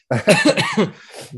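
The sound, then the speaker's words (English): A quick burst of several hoarse coughs from a person with a sore throat, in rapid succession, fairly loud, trailing off into a softer, raspy throat sound. No talking. “sorry, my throat is killing me today, so you might hear a little bit of a cough.”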